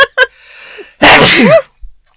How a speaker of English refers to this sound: I have to sneeze, so you're going to have to say something for a minute here. Okay. Or we could be completely silent and I could edit out the sneeze. Let's do that. Wait, it's coming. It's almost here. Talk.